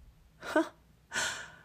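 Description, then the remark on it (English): A sharp gasp of surprise, a quick breathy intake, followed after a brief pause by a longer airy breath, with no talking around it. “Emily gasped in surprise.”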